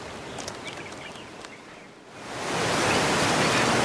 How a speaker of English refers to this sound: Look at that. Water just pouring out of that rock wall into a pool.